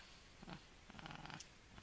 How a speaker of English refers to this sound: Do I hear purring? No, you hear growling. No, I think that's growling.